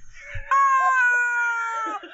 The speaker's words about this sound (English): I think you'll find, and I'm no expert, that's a rubber chicken.